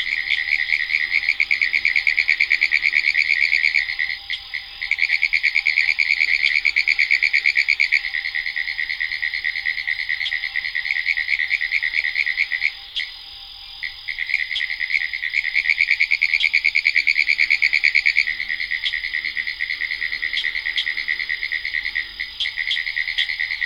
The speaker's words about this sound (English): pine woods tree frogs lift their froggy voices in song